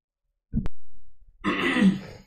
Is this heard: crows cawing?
no